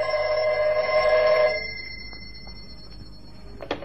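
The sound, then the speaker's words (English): A telephone bell rings loudly and steadily in an office for about a second and a half, then cuts off, leaving a faint hum with a small click near the end. “I'd hardly time to look over the papers on my desk that had accumulated during my absence when the phone rang.”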